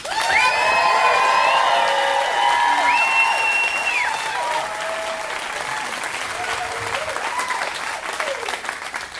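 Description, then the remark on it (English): A crowd claps steadily for about nine seconds to welcome a storyteller on stage for his first time, with high whoops and cheering voices rising over the dense clatter at the start, then tapering to softer applause toward the end. “You need to show him your appreciation.”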